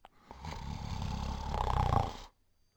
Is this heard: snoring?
yes